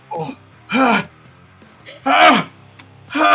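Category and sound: vocal imitation, voice imitating a sneeze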